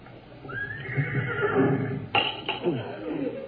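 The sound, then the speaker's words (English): A horse on the front lawn right outside a house gives a long, high whinny that rises and wavers before breaking into shorter snorting bursts, clear over a low background rumble. “It almost sounded like a horse.”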